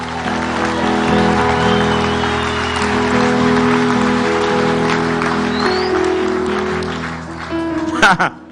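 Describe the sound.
An audience claps steadily, a dense crowd of hands over sustained organ-like chords and voices, with a few sharper, louder claps near the end.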